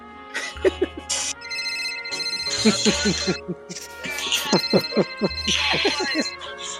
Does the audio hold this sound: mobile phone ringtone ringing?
yes